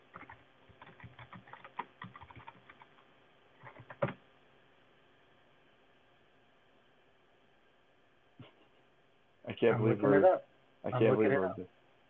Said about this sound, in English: I can hear you typing.